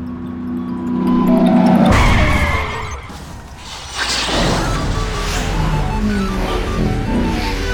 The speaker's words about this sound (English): Ah, here comes the ice cream truck. Catch it.